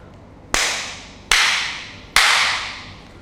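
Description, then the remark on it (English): Three sharp hand claps ring out at a slightly uneven pace, each a loud bright snap with a short fading tail, over a faint low hum and no talking. “Clap three times.”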